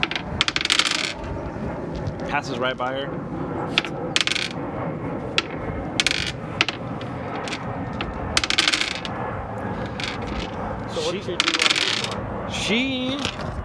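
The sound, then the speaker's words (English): Dice from a player's dice set rattle and clatter repeatedly as they are adjusted, with sharp clicking bursts throughout while a few people talk quietly underneath. “Yeah, I'm gonna just adjust my dice set real fast.”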